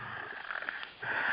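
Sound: heavy breathing into microphone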